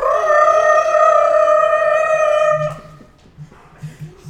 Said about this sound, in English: Victory screech!